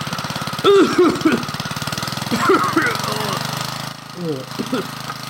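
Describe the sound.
A steady, rapidly pulsing engine drones throughout at close range, its rhythmic chugging holding even from start to finish while voices break in over it at moments.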